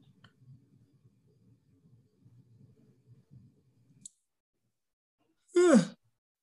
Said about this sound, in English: The first yawn by ….